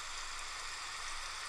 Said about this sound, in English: Okay, so here's one. Again, I'm going to put this on indefinite because I don't know how long it's going to take my baby to fall asleep. And this is heavy rain.